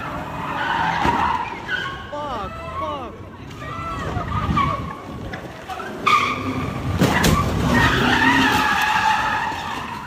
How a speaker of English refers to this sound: That's a really nice Mercedes to be ramming into a piece of shit car, right? It's probably stolen. That's true rage right there. Because that's fucking brand new Mercedes.